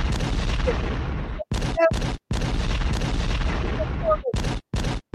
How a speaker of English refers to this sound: We need to drop the explosions. Pop, pop.